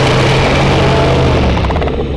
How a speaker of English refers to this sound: The giant 30-foot-tall gorilla with red fur charges towards you. It comes to an abrupt halt and bellows out a roar that shakes the whole arena.